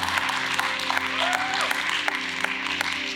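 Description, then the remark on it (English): Steady hand clapping from a church audience fills the whole clip, a dense patter of many overlapping claps at a fairly even level, with a low sustained hum underneath. “Yeah, hand clap right there.”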